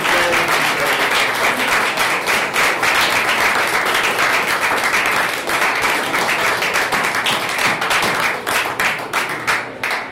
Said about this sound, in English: Before we do, if I can give a great round of applause for these people standing next to me, for the work they do, for the time they took out today.